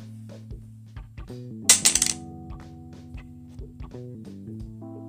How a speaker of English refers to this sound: I'm just gonna flip it again. I can't take this. Okay, so this coin is rigged. That's clear. I don't know what to do now. Tails four times in a row.